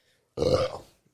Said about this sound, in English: Why do you burp so much? It's only here. It's gross. I have to hear it in my headphones every single episode.